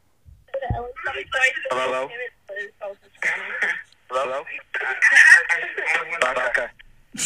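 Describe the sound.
Thin, band-limited voices over a phone call line, with speech repeating back as an echo because the two callers are at the same place, in steady bursts of moderate loudness for several seconds.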